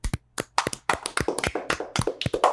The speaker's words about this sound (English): And as we do at the end of every single bracket, we are going to clap it out.